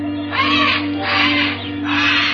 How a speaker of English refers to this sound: Old man Kelso had a huge aviary at one corner of the house. Something had disturbed the birds.